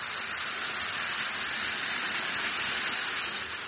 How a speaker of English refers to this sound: Drop one or two Alka-Seltzer tablets into a glass of water like this. Listen to it fizz.